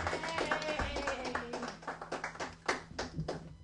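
An audience applauds, a dense, irregular patter of many hands clapping at moderate volume that carries on steadily for a few seconds, with a faint low hum underneath and no one talking.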